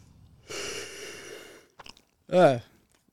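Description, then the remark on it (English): A long, breathy yawn stretches out, followed by a few small mouth clicks and a short voiced exhale at the end. “I just yawned.”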